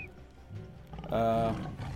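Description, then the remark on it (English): A person imitates a tiger's growl, starting low and rough, then swelling into a louder, strained roar-like rumble near the end of the short burst. “I can't really growl like a tiger. Let me give it a try.”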